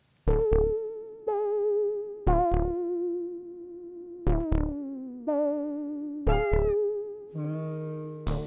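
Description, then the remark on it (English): A series of drawn-out, tonal cat meows repeats roughly every second or two, each starting with a sharp attack and holding a steady, slightly processed-sounding pitch, loud with no talking. “But if you want to really see X inactivation in action, look no further than a tortoiseshell cat, which, unsurprisingly, Mary Lyon owned.”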